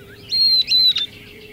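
A northern beardless tyrannulet sings a brief, high, thin phrase of a few clear whistled notes broken by quick buzzy flourishes, lasting under a second over faint background hiss.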